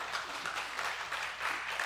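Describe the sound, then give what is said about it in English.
A crowd applauds steadily, a dense wash of many hands clapping at once, moderately loud and sustained without pause for the whole stretch. “You should clap now.”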